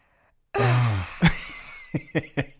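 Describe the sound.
A voice imitates a startled gasp, a sudden loud, breathy, strained cry up close, followed by a sharp catch and a few short rhythmic breathy pulses trailing off.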